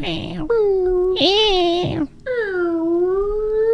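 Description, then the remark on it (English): A person mimics a cat meowing, with three loud, drawn-out, whiny vocal meows in quick succession, their pitch rising and sliding down. “Kitty, kitty. You're like, oh my God, come here. I got a treat for you. What? Meow.”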